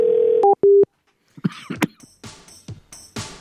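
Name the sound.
telephone dial tone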